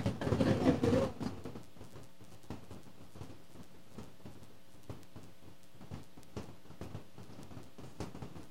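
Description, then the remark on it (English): A brief loud rush of heavy rain opens, then settles into a steady, softer downpour with irregular drips and taps pattering. No one speaks. “This is raining way too hard for you guys to go anywhere right now.”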